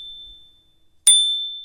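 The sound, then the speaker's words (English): A bicycle bell in Berlin, Germany, gives a single bright, metallic ding as it is tried out. The ding rings out and slowly fades, clear, with no talking around it. “As is trying out the bell.”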